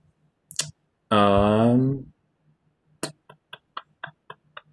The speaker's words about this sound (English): So in that instance, I'm going to roll a d20 to see if your presence has been noticed by whatever's in there.